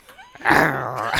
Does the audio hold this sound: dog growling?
yes